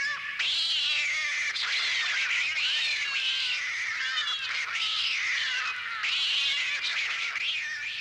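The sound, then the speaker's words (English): A cat on a spooky sounds tape yowls and meows continuously in loud, drawn-out, wavering cries with rising and falling pitch, barely pausing between calls, with no talking. “Cat.”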